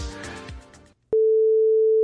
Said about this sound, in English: So okay, so you're going to hear a beep.